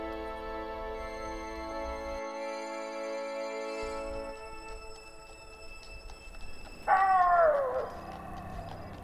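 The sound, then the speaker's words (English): A short, wavering coyote howl at midnight rises and falls near the end, fairly loud, over a low, steady droning hum that fills the quiet nighttime background. “Coyote's call. Midnight.”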